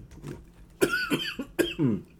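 A few short, tight nervous coughs in quick succession, each a sharp burst with a brief throaty rasp, sounding tense and hesitant rather than heavy.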